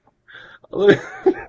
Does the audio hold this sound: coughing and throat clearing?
yes